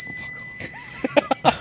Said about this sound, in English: But you mentioned beer, therefore they had to ring the bell.